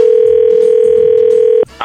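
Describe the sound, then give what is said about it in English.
A loud, steady telephone dial tone hums for over a second and a half, then cuts off and gives way to a short burst of touch-tone dialing beeps as a call is placed to a man. “we're going to get him on the phone and we're going to talk to him, try to get you a second date.”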